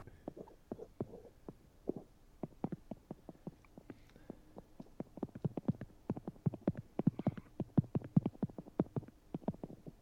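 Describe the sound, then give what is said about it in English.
Heavy, loud keyboard typing: a rapid, uneven stream of sharp clacking keystrokes that speeds up toward the end, with no voices over it. “Is that you typing?”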